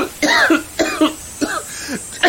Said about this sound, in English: He got a face full of it. Sure did. Cough it out.